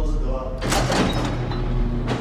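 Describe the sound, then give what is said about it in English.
A heavy metal jail door grinds as it slides along its track, a loud rumbling scrape that starts abruptly and rolls on for over a second before clanking to a stop. “You pass through a dungeon-like set of doors to get to his 7-by-12-foot cell.”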